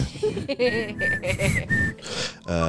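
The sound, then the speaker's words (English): A short whistled Old Spice advertising jingle, a few clear, held notes rising and falling over about two seconds, set against a busy, murmuring background. “The Old Spice whistle.”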